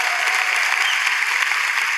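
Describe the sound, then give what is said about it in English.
An audience in church applauds steadily, a dense, even patter of many hands clapping at once with no break, filling the whole two seconds at a consistent, fairly loud level. “He loves when people clap for him, by the way.”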